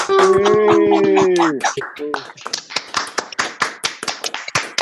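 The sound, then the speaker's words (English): A burst of sustained voiced cheering gives way to scattered, uneven hand claps, a few overlapping at a time: small-group applause coming through a Zoom video call at the end of the virtual Grog Meet. “You got proper Zoom applause.”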